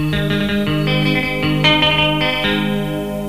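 A loud punk rock song with thick, distorted electric guitar chords, pounding out a steady, driving rhythm with sharp chord changes, all instrumental with no singing in this stretch.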